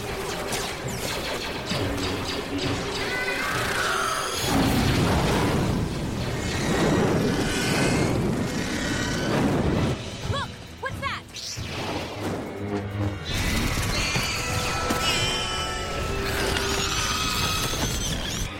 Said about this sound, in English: That screeching sound you hear is the sound of Geonosians on fire and screeching in horrific pain.